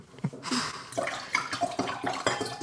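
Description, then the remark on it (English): Water splashes and gurgles as it's poured into a glass, a bright, bubbling trickle with shifting pitch, fairly loud, no talking over it. “I'm going to pour some water now.”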